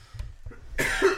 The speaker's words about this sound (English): Oh, why am I coughing?